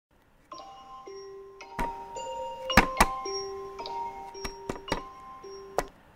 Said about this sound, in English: Ugh, stupid alarm. What time even is it?